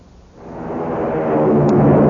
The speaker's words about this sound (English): Hear that? It's the sound of a mighty American Airlines flagship taking off.